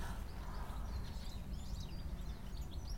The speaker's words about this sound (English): And all this twitter and tweeting is actually goldfinches.